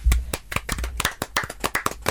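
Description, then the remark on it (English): A short burst of applause: quick, irregular hand claps, sharp and fairly loud, carrying on steadily for about two seconds with no talking over them. “Round of applause.”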